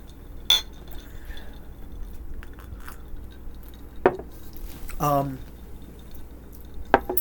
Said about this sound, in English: Clink it up.